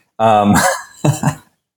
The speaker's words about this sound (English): oh, there's my dog barking. So good, man. Henry, be quiet.